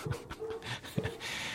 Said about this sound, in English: my dog is barking at the male person.